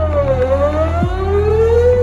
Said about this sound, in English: This is why we use low frequencies anytime we need a sound to travel as far as possible, like a foghorn. Or like a sweeping tornado siren.